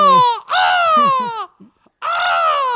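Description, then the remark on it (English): A person imitates a firebird's song, as part of a Phoenix protection spell, with loud, high, wailing vocal cries in three bursts, each pitch sliding slowly downward, with a brief quiet break before the last one. “That was a weird bird noise you made.”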